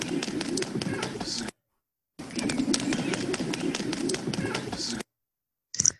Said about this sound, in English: So yeah, there are birds in the background, but that's not what I'm interested in. I'm interested in the more rhythmic sound that you're hearing on top of the birds.